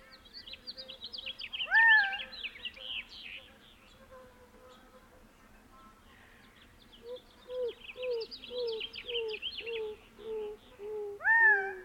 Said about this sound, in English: And a house finch.